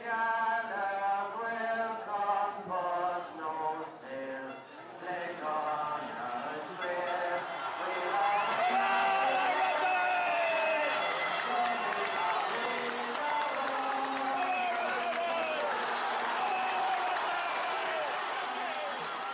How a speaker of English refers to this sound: Despite the rain, there's a huge turnout for the Connacht final. A large crowd of people